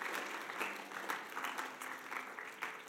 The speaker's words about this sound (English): Let's give him another clap and thank him for doing that today.